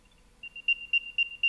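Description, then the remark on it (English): An item tracker lost inside an apartment beeps after a button is pressed to find it. Its plastic dome vibrates as the speaker. A high, thin electronic tone chirps in a quick, repeating rhythm, with about four louder pulses spaced evenly after a short quiet start. No one speaks. “You can, first of all, have this thing make a little beep by hitting a button.”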